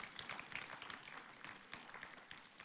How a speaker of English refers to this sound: Yeah, you can applaud for that. It's a great story.